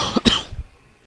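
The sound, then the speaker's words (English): A single fairly loud cough with a quick double burst of breathy noise, fading out quickly into near silence with no talking. “But we do have a cough.”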